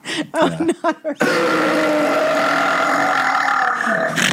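A moment of quick talking, then a long, loud, drawn-out burp rumbles close to the mic for about three seconds before cutting off.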